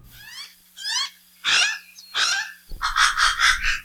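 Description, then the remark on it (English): Alala (Hawaiian crow) calls, a native Hawaiian crow now extinct in the wild, loud: a few drawn-out, harsh, wavering cries, then a rapid run of repeated raspy notes at the end. No talking. “Professor Patrick Hart brings us the haunting calls of the alala, the Hawaiian crow.”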